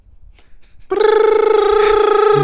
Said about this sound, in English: Phone call.